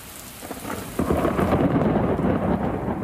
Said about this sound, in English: Overnight in the Midwest, a washout. Heavy rain and dangerously high winds wreaking havoc on the suburbs of Chicago.